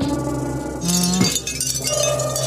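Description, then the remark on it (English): Wind chimes ring out in a steady, shimmering wash of overlapping metallic tones, bright and sustained, with a fuller burst of ringing partway through and no voices. “They show wind chimes.”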